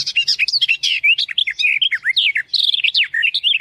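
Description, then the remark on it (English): A songbird, likely a warbler, sings a fast, continuous jumble of high chirps and trills, bright and close, with no pauses and no voices. “It's another, I don't know, some warblery thing from Europe”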